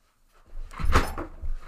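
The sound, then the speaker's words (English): A heavy thud and a short wooden creak as someone drops into a chair, with a little rustle and shifting afterward, fairly loud, no voices. “You're about to break that chair.”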